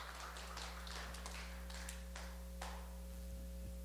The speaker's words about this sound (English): Thank you for that spattering of spontaneous applause.